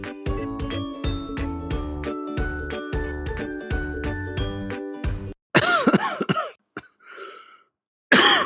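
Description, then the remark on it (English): A bright tinkling, chime-like jingle plays for several seconds, then stops and gives way to a loud burst of several harsh coughs, with one more cough at the very end. “And your cough is still there?”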